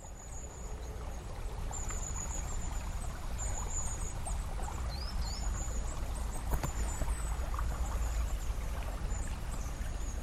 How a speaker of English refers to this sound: I'm here now at the river. I've sat down so that the river is almost skimming in front of me, and as you can hear, I am canopied by a group of long-tailed tits, which are such joyous little birds.